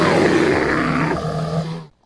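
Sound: animal roar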